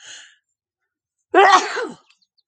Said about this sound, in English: It's spring. There will be sneezing.